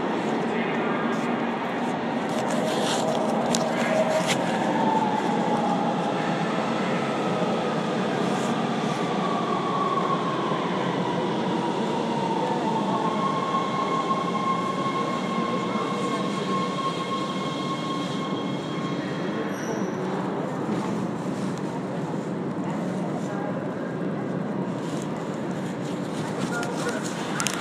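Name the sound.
train passing on rails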